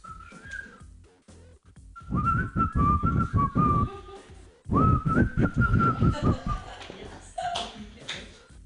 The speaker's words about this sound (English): Can you whistle? Who can whistle here?